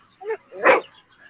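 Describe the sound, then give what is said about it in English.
A dog in a TV commercial gives a short, soft yip followed by a louder, sharper bark, two quick sounds close together, with nothing else around them. “Look at the cute dog.”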